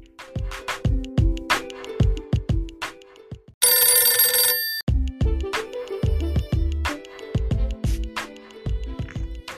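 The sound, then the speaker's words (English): A telephone rings loudly, a bouncy electronic melody of repeating tones broken in the middle by about a second of dense, shrill bell-like trilling, with no voices. “I immediately received a phone call from my friend.”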